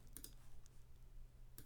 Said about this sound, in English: How's this? How's all this clicking sound, huh? Sound good?